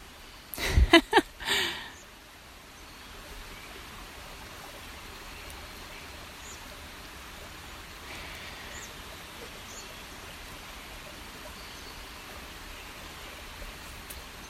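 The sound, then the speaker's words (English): A creek flows steadily with a constant rushing hiss that stays even throughout, preceded by a few brief clattering knocks right at the start. “Maybe this creek here becomes”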